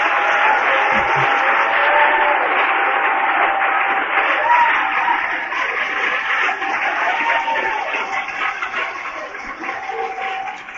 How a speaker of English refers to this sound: And praise God tonight, it's together. We're clapping our hands together.